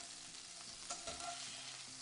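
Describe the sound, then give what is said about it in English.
Frog legs sizzle steadily in a hot pan, a dense crackling hiss with a brief scrape or clatter as they are turned partway through. No voices are heard. “We got these frog's legs going right here.”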